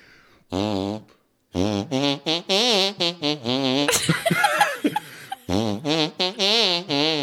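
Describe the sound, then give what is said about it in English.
A loud tune played as buzzy farts on a hand, about a dozen wobbly pitched notes in a steady rhythm, broken midway by a messy sputtering burst before the melody resumes. “I was going to fart it on my hand.”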